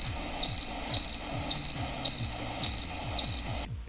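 A cricket chirps in a steady rhythm, seven short high-pitched trills about half a second apart, clear and close, with no voices, before falling silent just before the end.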